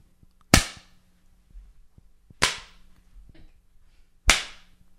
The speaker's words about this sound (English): whose ass is being swatted? How hard am I hitting these ladies? Medium.